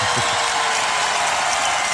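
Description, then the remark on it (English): A crowd cheers and applauds steadily in the town hall square in Tallinn while watching the Eurovision Song Contest, a dense wash of clapping and shouts holding loud and constant for the full two seconds. “There's some crowd there.”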